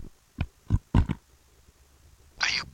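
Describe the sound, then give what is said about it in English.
A quick series of short, low, guttural burps, a few in a row, followed by a brief breathy hiss after a short pause. “Are you burping?”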